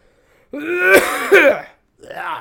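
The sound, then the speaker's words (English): A loud bout of throat clearing and raspy coughing from a person who still has a cough and is a little sick, roughly a second long with two harsh bursts, followed by a shorter cough after a brief pause. “Sorry, guys. I still have a cough.”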